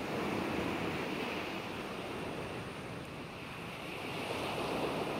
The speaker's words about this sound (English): The tick-tock of the clock is replaced by the waves endlessly lapping up on the sands.